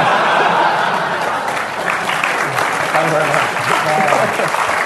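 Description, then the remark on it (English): Loud, sustained applause from a crowd fills the whole stretch, a dense wash of many hands clapping at once, with scattered voices and a hint of laughter mixed in. “Don't clap, Richard Keys.”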